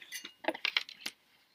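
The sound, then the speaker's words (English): Cups of coffee clink together in a toast, a quick series of about five bright, ringing taps spaced unevenly, with no voices over them and a short fading ring at the end. “Why are you cheersing your coffee?”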